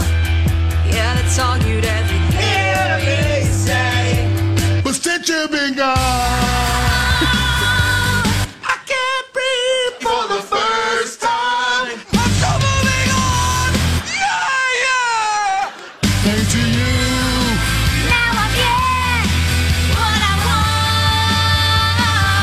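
A loud pop song with a powerful, belting female lead vocal over a steady thumping bass line, with a few brief breaks where the backing drops away before the full band returns.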